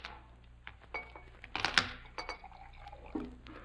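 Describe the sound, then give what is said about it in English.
A drink is poured into Mr. Holmes's empty glass, a soft trickling splash with a couple of light glassy clinks in the middle, fairly quiet against a faint hum. “Holmes's glass is empty.”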